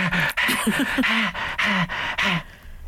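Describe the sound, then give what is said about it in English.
A person imitates a dog panting hard as it pulls on its lead during a walk: a quick, steady run of about half a dozen loud, breathy huffs, each with a hoarse voiced edge, then a short fade. “Taking the dog for a walk, and the dog was going.”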